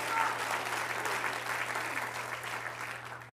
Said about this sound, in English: And if you believe in the power of these five things, can you clap your hands unto the Lord and say, use me. Use me to do it.